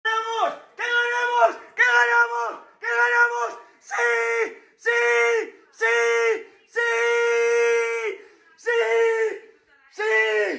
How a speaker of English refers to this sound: So yeah, clearly very happy about that. Yeah, I mean, that's just screaming. I've seen the last 14, 15 seconds that, again, I think you posted the other day on our Twitter, and it was just a lot of excited Spanish shouting, really, wasn't it?